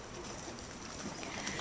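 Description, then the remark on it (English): A steady wash of choppy water around a tandem kayak being paddled as fast as possible through choppy surf, soft and continuous with faint splashes. “they push their tandem into the choppy surf and begin paddling as fast as they can”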